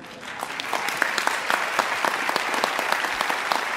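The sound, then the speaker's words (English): An audience at the 74th Tony Awards applauds steadily during playwright Lopez's acceptance speech, a dense, sustained patter of many overlapping hand claps at an even loudness throughout, with no clear voices above it. “I say that not to elicit your applause, but to highlight the fact that the Latine community is underrepresented in American theater.”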